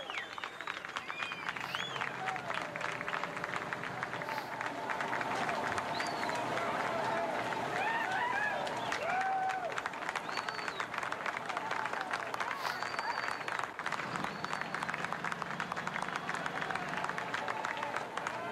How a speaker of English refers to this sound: They do not want anything to go wrong here because it's been an exhausting 58 hours, and they want to make certain that when they bring her up, that she is all right and there are no difficulties here. Here she comes. There's clapping.